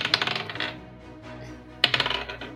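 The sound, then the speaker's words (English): Two quick bursts of dice clattering and rattling across a hard tabletop, a flurry of sharp clicks, a short pause, then another bright roll settling down, as a player rolls a set of dice to attack a second time in a tabletop game. “And I'm going to use my next set of dice to try to attack for the second time.”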